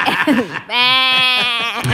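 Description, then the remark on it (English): A single drawn-out sheep bleat, loud, wavering slightly in pitch for over a second, preceded by a brief rustle of other noise; sheep walking in circles in Inner Mongolia, China. “But anyway, earthquakes getting active, and now sheep are walking in circles.”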